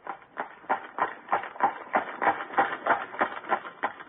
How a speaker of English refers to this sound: he knows it's a horse.